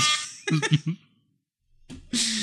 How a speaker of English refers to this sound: Oh, you know what? There he is. He's found the air horn button. And he's just not going to let that one go, is he?